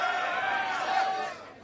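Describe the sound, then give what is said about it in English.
A crowd of men in an audience cheers together on a count of three, in one loud, sustained roar of shouting voices, with a held shouted pitch running through it, trailing off slightly at the end. “Let's hear the man only now. Give me a cheer.”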